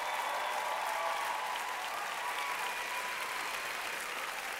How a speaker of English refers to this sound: We got to get our shout back. Somebody clap like you're going to get your shout back.